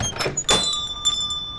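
A small bell over a shop's entrance door jingles with bright ringing tones that linger and fade, while the door swings open with a soft rattle and shuffle. No one speaks.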